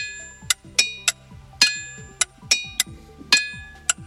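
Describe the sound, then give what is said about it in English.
A hammer strikes a boulder in the 7-acre boulder field of Upper Eddy, Pennsylvania about nine times in an uneven rhythm. Each hit rings out with a clear, high, bell-like tone that fades quickly, with no one talking. “When struck with a hammer, some of the rocks found in the area's 7-acre boulder field will ring out with a clear, bell-like tone.”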